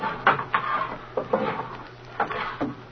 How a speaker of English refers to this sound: Now push those drawers back and let's arrange everything the way it was.